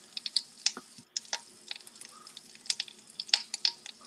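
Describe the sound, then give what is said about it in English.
Chicken breasts sizzle in garlic butter in a hot skillet, a steady bed of crackling with sharp, irregular pops scattered throughout and no voices. “We put these chicken breasts on the skillet right here. There you got shit sizzling over there.”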